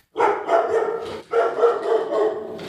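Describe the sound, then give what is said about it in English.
Dogs bark loudly at doors in a dense, overlapping flurry, filling two long stretches separated by a brief pause, with no voices present. “Barking at every door possible.”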